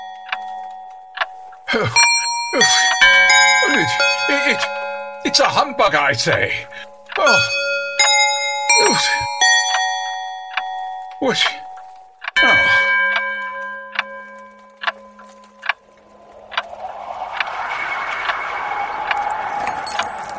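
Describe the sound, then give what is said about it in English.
Many long-disused bells and cobweb-covered clocks throughout a house ring and chime at once in a dense, clanging jumble of overlapping metallic strikes. A man's voice briefly breaks in, and the chiming gives way to a rushing noise. “With great astonishment, and with a strange, inexplicable dread, there quite suddenly was heard the sound of bells, long since disused, and every cobweb-covered clock throughout the house began to ring.”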